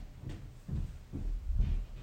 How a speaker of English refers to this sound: Good Lord, did you hear that? I'm in my basement and I can hear my wife walking by upstairs. You hear that?